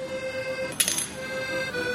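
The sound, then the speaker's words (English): A single bright metallic clink of a Canadian coin dropping into the cup of a blind man playing an accordion, with a brief ringing shimmer that fades quickly over a faint steady hum. “I heard that clink. That wasn't $2.”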